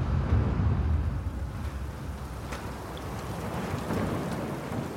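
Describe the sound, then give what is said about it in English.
A fierce storm at sea roars steadily, with deep rumbling icy wind and a mix of snow, sleet and hail pounding a boat's exposed deck, punctuated by scattered sharp impacts. The loud, dense noise holds for the whole stretch with no voices. “There's a strong, icy wind, and a mix of snow, sleet, and hail pound the exposed deck.”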